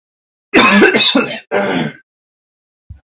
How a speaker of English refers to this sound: Sorry you had to keep hearing me clear my throat.